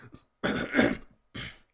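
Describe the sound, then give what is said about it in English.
A raspy fit of throat clearing and coughing: a brief small hack, then a long harsh clearing burst, followed by one more shorter cough, with no talking. “Sorry, I'm just having a coughing issue right now.”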